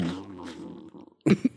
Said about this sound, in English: No, it's echoey in that room. I know that. When you fart, you just hear.